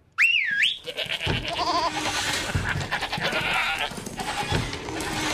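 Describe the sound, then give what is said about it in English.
Loud, wavering goat bleats ring out, one sharp cry after another, over a busy, noisy background with several animals calling at once; the goats are kept in the kitchen of a pizza restaurant. “Get ready for goats.”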